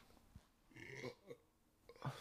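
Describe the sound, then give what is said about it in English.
A couple of guttural burps from a person a beer and a half in rumble out in quick succession, the longer one dragging with a low, croaky texture before a shorter belch closes it off. “That's the proper amount of burps are coming out.”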